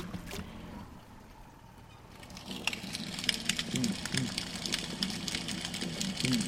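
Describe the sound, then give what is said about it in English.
Snapping shrimp, about an inch long, crackle underwater in a lagoon about 200 meters from a bridge at about 6:20 p.m., snapping their one enlarged claw: a dense, irregular patter of sharp clicks that thickens after a quieter start, over a steady low hum. “You hear the crackling sound. Those are snapping shrimp.”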